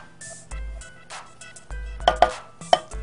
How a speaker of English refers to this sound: So while I'm showing you how to chop up the chocolate, we're gonna get our cream heated up.